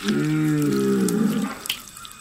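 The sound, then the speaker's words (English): A starving cow gives one long, low moo lasting about a second and a half, fairly loud, before trailing off into faint background noise. “I was too disgusted to do it myself and hid behind her skirts until she took the blade from me and, sighing, drew it across the cow's jugular.”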